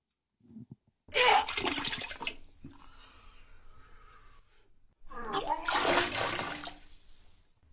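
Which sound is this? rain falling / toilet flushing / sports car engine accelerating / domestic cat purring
toilet flushing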